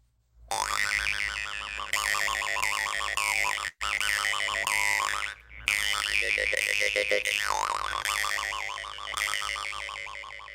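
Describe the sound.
A twangy, buzzing vocal imitation, made with the tongue, of the song of the morning lark of Yakutia: loud, rapid warbling trills that flutter up and down in pitch for about ten seconds, broken by a couple of brief pauses, with no talking.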